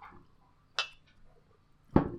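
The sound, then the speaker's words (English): Two sharp knocks of a glass striking a microphone, a bright clack followed about a second later by a louder, fuller thump with a short ringing tail, and no talking. “I couldn't make anything clink satisfactorily, but I just beat my microphone with my glass.”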